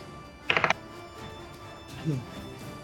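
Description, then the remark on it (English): Dice clatter across a table in a quick burst of four or so sharp, bright clicks lasting under a second, followed later by a faint voice murmuring in the background. “Okay, I'm going to roll new dice then.”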